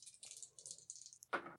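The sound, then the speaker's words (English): Dice clatter and rattle in a quick flurry of light clicks, ending in a sharper tumble as they settle on a hard surface, landing on snake eyes. Quiet, with no voices. “I can't let you roll any more dice.”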